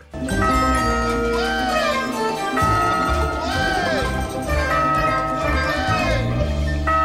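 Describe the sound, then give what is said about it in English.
A large old church bell is banged loudly and repeatedly, its struck tones overlapping into a dense, continuous ringing with fresh strikes every couple of seconds. “He's rat banging on the old church bell again.”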